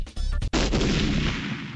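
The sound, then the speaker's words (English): A loud explosion sound effect, used as an outro, bursts in suddenly after a brief musical snippet, then rumbles and hisses as it slowly fades. “It's an explosion?”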